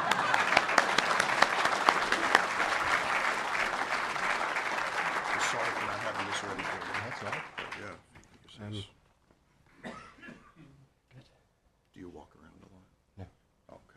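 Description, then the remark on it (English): Sustained audience applause, a dense wash of many hands clapping for about seven seconds, then fading out as a man begins speaking in short bursts. “So I tell you what, this is always awkward, so just clap and make him feel like a big deal.”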